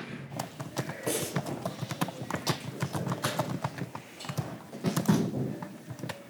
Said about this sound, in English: I was using my hair clip to like open and close so it can make a noise.